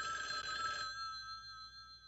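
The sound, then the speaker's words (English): A telephone bell rings once in a shack, a bright metallic jangle for nearly a second that then hangs in the air as a steady, fading ring. Fairly loud, with no voices. “Back in my shack, the phone rang just after I snorted the third long line of cocaine.”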